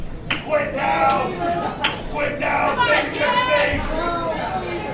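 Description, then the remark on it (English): A wrestler's rough, drawn-out growls and shouts rise over a noisy arena crowd, with scattered clapping and chatter filling the background throughout. “God, you can hear that growl from here.”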